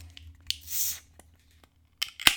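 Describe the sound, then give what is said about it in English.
A metallic click and a short fizzing hiss as a can of Idaho 7 strawberry pale ale with lime and pineapple is cracked open, with a bit of a splash. A few small clicks and a couple of sharp handling knocks follow. No one speaks. “Idaho 7 strawberry pale ale with a dash of lime and pineapple. Sounds pretty good. Should be good. Let's get it cracked.”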